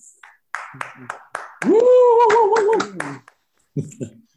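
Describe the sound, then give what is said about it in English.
Scattered, uneven hand claps from a few people in an online session, with a loud sustained whooping cheer rising and wavering for over a second in the middle before a couple of last claps, cheering the session's presenters. “If you could unmute yourself and perhaps help me to cheer them.”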